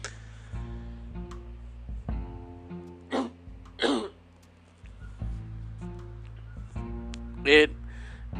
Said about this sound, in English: Sorry, just allergy attack. And this is allergy season, so my coughs and sneezes just come on and they're just full bore.